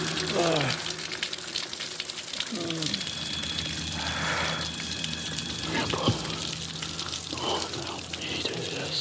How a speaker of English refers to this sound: He's sitting under a waterfall in the cold.